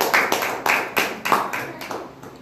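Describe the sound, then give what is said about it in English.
Applause from a small audience at a LegalShield presentation as people come up to share, with crisp, evenly spaced claps standing out above a softer patter of hands that gradually fades toward the end. No one speaks. “Let's give them a round of applause as they come up.”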